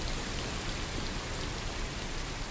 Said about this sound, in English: So, yeah, that's rain, which many people find very relaxing. But yeah. This isn't just any rain. It's rain that has been modified to make it white noise.